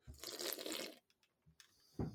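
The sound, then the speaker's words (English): Someone takes a sip of a drink into a microphone: a loud, wet slurp of liquid lasting about a second, followed by a few faint gurgles and then a short, sharp second slurp at the end. No talking. “Okay, everyone take a sip into the microphone. Slurp.”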